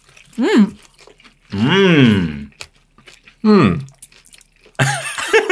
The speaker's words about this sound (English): Crunching and mms. You guys know what it's like. Just fill in the podcast yourself. We'll eat these wicked wings.